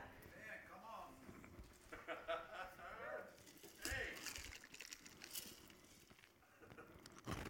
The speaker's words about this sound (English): I'm sorry about the crunchy ice if you listen to the podcast.